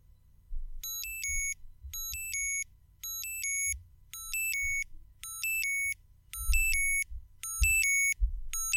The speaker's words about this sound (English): At 6 a.m. the next morning, I suddenly became aware of the cold air around me as the alarm sounded.